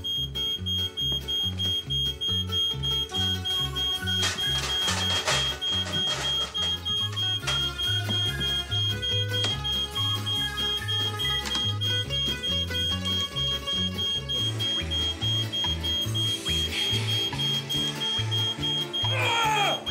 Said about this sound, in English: Oh, smoke alarm. The smoke alarm's going off.